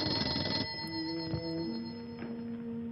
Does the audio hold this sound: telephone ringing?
yes